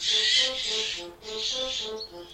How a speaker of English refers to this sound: A falcon?